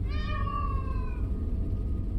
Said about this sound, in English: Then we heard it. A high, warbling sound piercing through our argument. It sounded like a mix between a cat's yowl and a child crying, ow. Plaintive. Keening. Otherworldly.